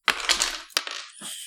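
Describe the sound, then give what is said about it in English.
Dice for a tabletop game clatter and tumble across a real hard tabletop in a quick burst of bright rattling clicks, with a second sharp knock before they skitter and settle. Fairly loud, with no talking. “Let's roll dice on a real table.”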